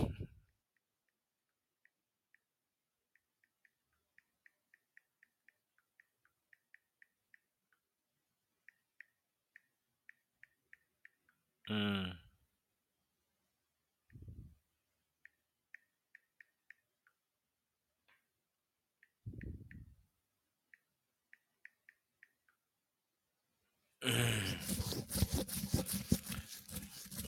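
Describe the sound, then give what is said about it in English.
Faint, light keyboard clicks tap out in quick irregular runs as someone types messages to cousins, broken by a few short louder bursts of coughing, then a harsh rustling noise swells near the end. No one speaks. “I'm typing my cousins and letting them know how I live.”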